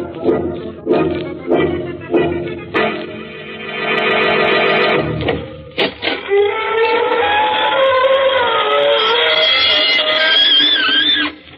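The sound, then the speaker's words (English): The squeaking door of the Inner Sanctum Mysteries radio show opens in a long, wavering, high-pitched creak that rises and falls over several seconds, after a few short choppy bursts of sound. No one speaks. “This is your host inviting you through the gory portals of the squeaking door for another soiree with some super-duper supernatural personality.”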